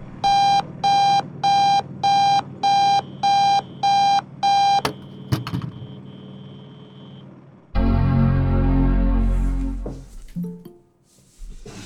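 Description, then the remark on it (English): An alarm clock beeps loudly in a steady run of about seven electronic bursts, then cuts off with a click, followed by a few seconds of loud, rough rustling noise. “Sorry, I overslept the alarm.”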